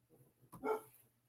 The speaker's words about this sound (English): And the dogs are over there barking.